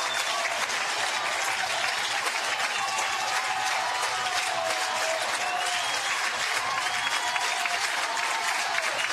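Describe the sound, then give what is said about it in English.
A baseball stadium crowd on its feet cheering and clapping as Florida is down to its final strike, a steady, dense roar that holds at a constant loud level for the whole stretch, with no pauses and no clear voices above it. “I would say crowd to their feet, but they've been there pretty much the entire inning.”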